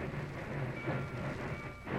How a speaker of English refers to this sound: Train is stopping for the switch.